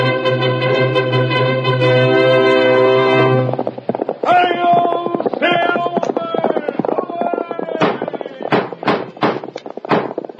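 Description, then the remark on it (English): A long, brassy horn blast gives way to dramatic music, with a series of sharp galloping horse hoofbeats pounding through near the end, loud. “Horse with the speed of light, a cloud of dust, and a hearty hi-yo, Silver, the Lone Ranger”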